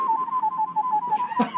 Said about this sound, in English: I can whistle better than that.